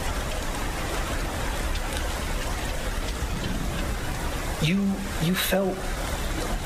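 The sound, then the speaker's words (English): Steady, even hiss of rain falling throughout, moderately loud, with a short burst of someone's voice breaking through near the end. “People are reacting to this like it's suddenly raining.”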